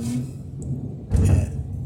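nature, thunder

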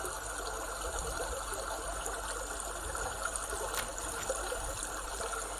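nature, babbling brook

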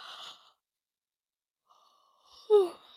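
human body sound, yawn

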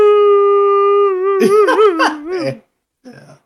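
animal, dog howling

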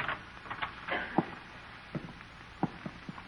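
household object, door being opened

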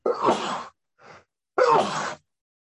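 human body sound, sneeze

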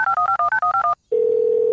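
signal or alarm, telephone dial tone

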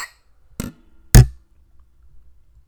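household object, glasses clinking

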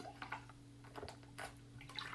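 human body sound, drinking water

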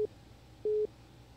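signal or alarm, phone line beep tone

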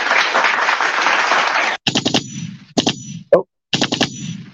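crowd, studio audience applause

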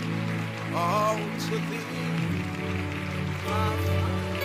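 crowd, audience clapping

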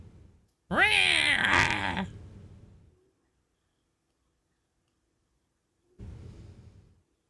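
animal, cats fighting and yowling

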